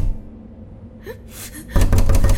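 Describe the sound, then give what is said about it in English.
A quick series of loud knocks on a round wooden door with a large copper knob holding a ring, at the end of a tunnel, rapping several times in a row after a brief sharp intake of breath. “They anxiously knocked on the door.”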